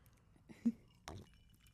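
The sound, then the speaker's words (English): Glasses of Woodford Reserve clink together in a toast, two quick bright taps against a quiet background, with no talking. “Well, we have some Woodford Reserve here for you. So, well, cheers to you.”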